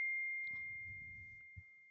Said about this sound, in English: That's somebody trying to phone me.